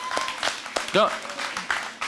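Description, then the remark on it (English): An audience claps in scattered, uneven bursts for about two seconds, with a short vocal cry rising briefly over the applause midway through. “I clap with that.”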